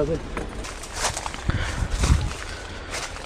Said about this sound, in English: Okay, I'm inside the place. You can hear me walking over the leaves.